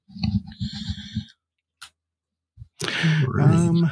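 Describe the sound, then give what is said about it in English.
A quick burst of clattering clicks as physical dice tumble across a tabletop, settling into silence with one last tap; a person starts talking shortly after. “I'm rolling physical dice”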